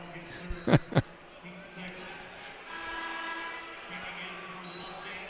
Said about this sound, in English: Rockhill will inbound from underneath the Cardinal basket, and there'll be a quick whistle and a foul. This time it'll be against Munising, and the Mooney bench might have called that one.